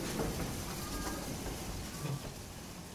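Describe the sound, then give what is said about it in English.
A steam train rumbles, clacks, hisses and chuffs steadily as it moves off into the distance, with a broad hiss and faint rattling clatter, holding at a fairly even loudness throughout, with no voices. “They stood and waited as the train clacked and hissed and chuffed its way into the distance, and then waited a few minutes more.”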